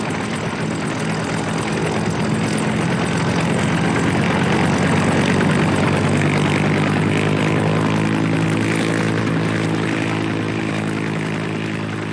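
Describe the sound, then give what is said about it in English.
A loud helicopter engine roars steadily, its rotor drone rising in pitch as it powers up for takeoff on a diagonal path; a two-seat helicopter heavily loaded with two adults and five amps weighing over 100 pounds each. Dense mechanical hum throughout, no voices. “Helicopter is heavily loaded, it can't go straight up. It kind of has to go on a diagonal path.”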